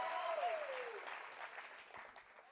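An audience breaks into dense, steady applause, many hands clapping at once in a sustained wash, with a brief high whistle-like tone sliding downward at the start before the clapping gradually thins.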